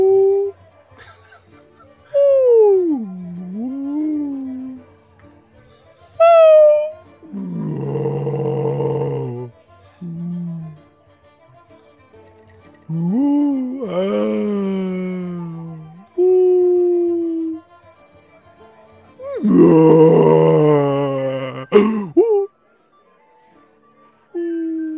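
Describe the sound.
A human voice imitates a whale call with a series of long, swooping moans and wavering howls that glide up and down in pitch, several loud bursts separated by short pauses.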